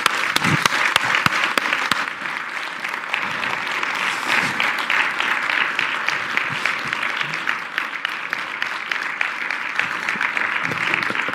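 A crowd breaks into loud, sustained applause, dense clapping that holds steady for several seconds with no voices standing out above it.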